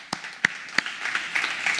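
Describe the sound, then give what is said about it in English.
A few sharp, separate claps ring out, then quickly thicken into a steady wash of audience applause welcoming a new guest services staff member to the team, holding at a moderate level with no talking. “So give him a big round of applause for joining our team.”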